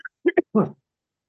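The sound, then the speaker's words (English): A short burst of coughing: two quick, sharp coughs followed by a longer, rougher one, then silence. No one speaks. “And yes, I know that was a cough.”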